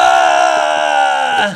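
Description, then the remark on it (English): A man playing a tabletop role-playing game lets out a loud, sustained yell in character, a single strained shout held for over a second before cutting off abruptly. “I'm yelling. Lynn is yelling while he's yelling.”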